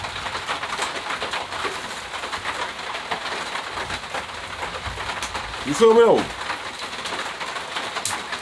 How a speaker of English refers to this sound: I know y'all hear that rain in the background.